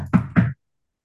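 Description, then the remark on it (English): Two knocks in quick succession on a front door, voiced by a person mimicking the sound rather than a real knock, fairly loud, followed by silence. “On the front door.”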